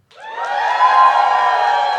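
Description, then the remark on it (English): An audience cheers loudly and steadily for about two seconds, a sustained roar of many voices that rises quickly and holds without any speech. “Cheer if you think Kimmy's the villain and she belongs in diapers.”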